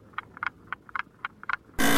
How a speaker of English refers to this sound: Yeah, I think you're there. You did it. You literally did it. I don't know if you can hear my buzzer there, but yeah, you are there,